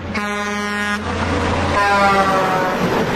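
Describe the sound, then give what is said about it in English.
A voice imitates a semi-truck horn: a loud, steady, buzzing blast lasting about a second, then a second rougher, longer honk, with no words spoken. “They said that my truck horn wasn't good because I did a semi-truck horn.”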